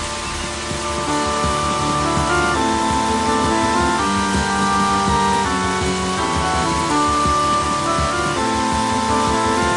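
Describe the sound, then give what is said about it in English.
Steady, dense rain hisses evenly throughout, layered with sustained musical tones that shift chords every second or so. No one speaks. “Rain sound.”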